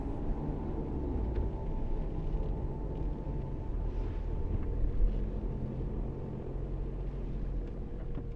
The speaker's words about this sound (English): The car starts without any issue, and you pull away from the drive.